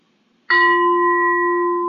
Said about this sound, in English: And the idea is that when each reader is finished, I'll ring a bell.